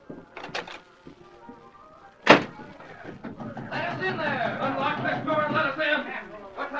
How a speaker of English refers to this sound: While men pounded on the locked door